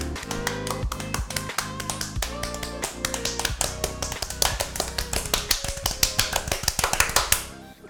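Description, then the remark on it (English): Rapid hand clapping, a long run of sharp, crisp claps in a quick, fairly steady rhythm, with a sustained tonal hum running underneath. “Clapping for you.”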